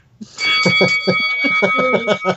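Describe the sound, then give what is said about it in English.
A bright bell rings loudly with a sustained metallic tone for about two seconds, layered over busy, rhythmic pulsing sounds, played as a transfer bell jingle. “Is that going to be our transfer bell, or are we going to have a cowbell again this year?”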